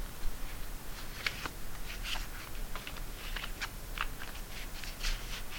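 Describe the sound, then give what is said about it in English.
A deck of cards being shuffled: a quiet, steady run of light papery clicks and snaps spread irregularly throughout, with no one talking. “We shuffled again.”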